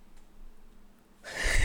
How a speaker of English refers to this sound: Sorry. Can we get a yawn counter? It never fails. No matter what. Even if I have coffee.